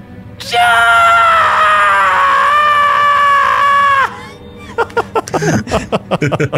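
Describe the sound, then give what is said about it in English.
A person voices a long, piercing shriek, held steady and loud for several seconds before it cuts off, followed by a burst of talking or laughter. “Her hands go to her mouth and she lets out a horrible, endless shriek.”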